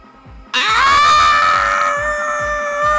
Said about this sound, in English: Yeah, end it like that. End it there. Just all of us scream.